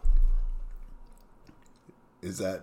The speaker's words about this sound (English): Are we going to just sit and watch you chew gummy worms for a while because it's too chewy?